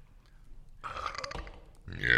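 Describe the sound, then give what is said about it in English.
A drawn-out, gurgling burp lasting about a second, followed by a sharper, louder burst of throaty sound at the very end. “Some nice burps, but that's really the only good thing about this.”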